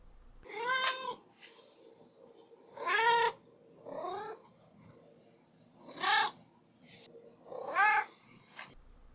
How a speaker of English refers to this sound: Now we're going to go ahead and turn it over to Duarte's Corner, where I give my cat Duarte a moment to share his thoughts on the book.